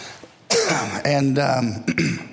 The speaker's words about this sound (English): you'll have to forgive me. I've got this dry cough left over. Hopefully it'll go away eventually. And so apologize if I cough in your ear here tonight.